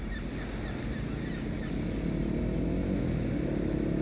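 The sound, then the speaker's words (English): A three-wheeler ATV engine drones steadily for several seconds, its rumble swelling slightly partway through, with no voices over it. “There he is. On a three-wheeler.”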